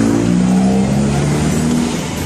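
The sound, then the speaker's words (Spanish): A car engine revs inside the vehicle while a father teaches his son, about 15 years old, to drive: a loud, steady low drone whose pitch rises and shifts slightly as it runs, with no one speaking. “fue grabado dentro del vehículo cuando el papá le va enseñando a manejar al hijo”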